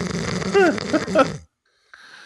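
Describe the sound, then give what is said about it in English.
A loud, rasping snore from a person asleep in a recording studio, with wavering, warbling tones, lasts about a second and a half, then cuts off abruptly into silence before a faint low hum. “Apparently, I snore really loud.”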